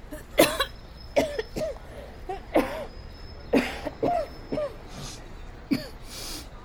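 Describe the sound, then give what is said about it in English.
A series of harsh, rasping coughs, about seven or eight in irregular bursts, fairly loud, with short breathy gaps between them and no talking. “it's none of my business, but you should have that cough looked at.”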